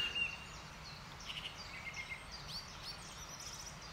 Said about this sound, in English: I paused a moment ago and stood beneath another male blackbird singing rather beautifully.